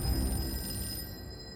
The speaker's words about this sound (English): Meanwhile, at 12:01 a.m., Robert Lochner was woken up by a phone call.